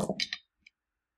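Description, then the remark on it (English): A quick cluster of small hard clicks and clatters as dice tumble across a table, ending in one last light tap before silence; fairly quiet. “Let him roll. I almost not roll worse than that. Okay, different dice.”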